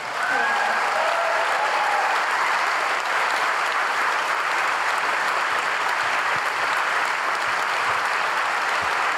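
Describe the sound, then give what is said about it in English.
Steady, sustained applause from a large audience welcoming a speaker being introduced, filling the whole stretch, loud and dense without a break, with a few brief whistles or cheers rising over the clapping near the start. “His voice has never been more crucial, and it's an honor to bring him here tonight, so please clap the loudest this time.”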